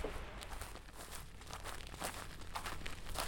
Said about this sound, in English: The sounds of dry grass crunching beneath your feet sounds like static as you walk across the field.